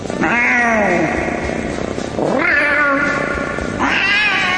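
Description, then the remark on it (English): A male pet cat wanting to be played with lets out three loud, drawn-out yowling meows in close succession, each rising then wavering, with a short gap between them and no talking. “My Velcro kitty wants me to go play with him, and if I don't, I'll have the wrath of the cat.”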